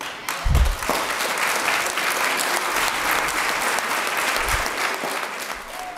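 Sustained audience applause at a University of Alaska Anchorage Black Student Union event, a dense, steady patter of many hands clapping at moderate loudness, with a few low thumps early on and no talking over it.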